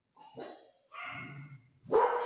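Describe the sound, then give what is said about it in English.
Three short, high-pitched yappy barks from small puppies, with brief pauses between them and the last one loudest. “Be quiet, babies.”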